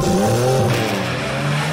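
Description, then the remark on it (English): Loud racing car engines roar and whine, with a sharp squeal of tires skidding across the track, all in one short continuous burst with no talking. “Start your engines!”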